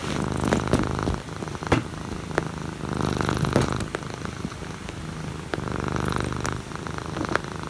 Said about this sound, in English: I've sent you a link to my cat video. Here it is snoring.